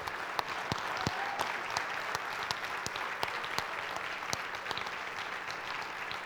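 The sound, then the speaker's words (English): A church audience at Grace claps in a steady round of applause for its outgoing interim worship director on his last Sunday: dense overlapping claps with sharper individual hits standing out, sustained at an even level for several seconds with no voices over it. “Can we just give him a round of applause?”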